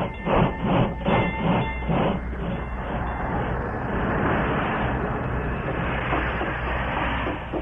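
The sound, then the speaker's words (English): A train rumbles with rhythmic clacking at first, then settles into a steady, loud mechanical roar as it brakes to a halt at a railroad station platform, with faint high squealing. “As the train braked to a stop ahead of schedule, he was glad he was on hand early to meet it.”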